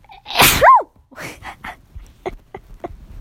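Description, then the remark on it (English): A single loud sneeze bursts out with a sharp airy blast, followed by a few softer sniffs and small breathy noises trailing off. “Oh, I feel like I need to sneeze again.”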